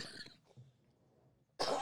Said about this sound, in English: Coughing already.